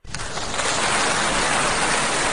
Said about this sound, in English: And, folks, we want to give him a round of applause.